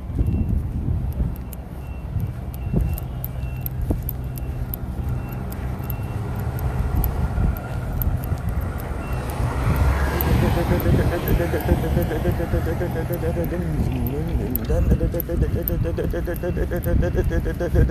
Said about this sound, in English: You hear the engine clucking like that? Like, see, clucking, chicken, hen. I hear a timpani.